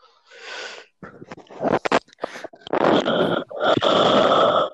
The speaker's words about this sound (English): why are you breathing so heavy? Because I'm focusing.